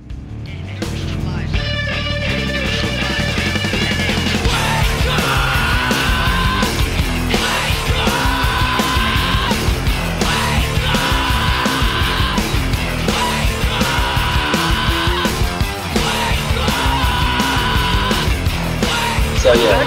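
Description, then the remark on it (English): A loud, dense rock song where a group of voices scream the chorus line "wake up" again and again in regular bursts over driving drums and heavy guitars. “So, it's actually people singing in there. I don't know. It sounds more like screaming. But they're saying wake up, nevertheless.”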